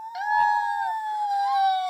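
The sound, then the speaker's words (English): A voice imitates R2-D2 in a video game screaming as it falls off the edge of a long walkway into a big pit, a sustained high-pitched electronic-sounding wail that holds steady, dips slightly, then rises again over about two seconds. “And just scream as he fell off.”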